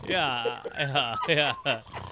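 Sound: voice imitating snoring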